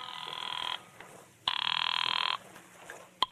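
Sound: telephone ringing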